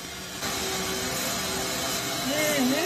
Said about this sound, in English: Look at that right there. Wow. You can just vacuum that off like that? That's crazy.